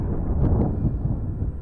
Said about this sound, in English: In a volatile explosion, the extreme pressure smashed apart the 25-foot-high, 60-foot-long, and 22-inch-thick wall at the rear of the brewery, which led to the rookery. So explosive was the blast, the bricks were thrown 200 feet away.